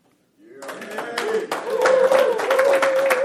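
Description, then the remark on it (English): A group of men breaks into applause mixed with whooping and cheering voices at 6:30 in the morning, starting abruptly after a brief silence and swelling louder over a few seconds, the clapping dense and continuous. “Just go ahead and show your applause or to cheer.”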